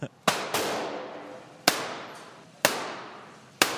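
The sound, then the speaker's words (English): Five sharp, loud gunshots fired at paper shooting targets. The first two come in quick succession, then three more follow at roughly one-second intervals, each crack trailing off in a brief ringing decay. “Try and shoot the guy without shooting the girl.”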